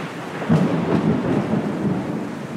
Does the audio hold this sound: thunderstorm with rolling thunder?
yes